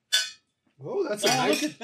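household object, glasses clinking

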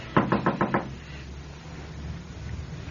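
household object, knocking on a door

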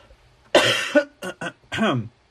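human body sound, person coughing

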